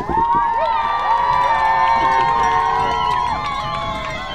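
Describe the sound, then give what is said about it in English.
A large stadium crowd of Tigers fans at a football game cheers loudly and steadily for their defense, many voices yelling and whooping at once in a dense, sustained roar that holds at a constant level for several seconds. “Come on, Tigers fans. Let's hear you cheer on your defense.”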